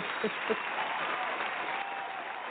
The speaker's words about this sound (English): So let's give everyone an applause.